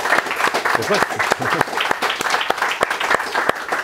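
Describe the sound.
An audience applauds steadily throughout, a dense, crackling mass of many hands clapping at a fairly loud level, with a brief voice rising faintly through the clapping partway in.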